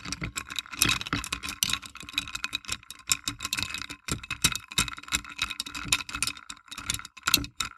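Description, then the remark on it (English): Rapid, steady clinking and rattling of a bar spoon stirring ice, fresh orange juice and Lukasawa potato vodka in a glass for a cocktail, a bright, continuous jangle of light metallic taps with no talking. “And to that, I've got 2 ounces of this Lukasawa potato vodka, and put that in the glass and give that a good stir in the glass with a bar spoon.”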